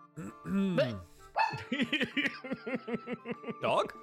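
A puppy named Rufus barks: a few drawn-out whining yelps followed by a quick run of short, high-pitched yips.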